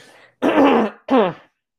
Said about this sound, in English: okay, excuse me, I've got to clear my throat.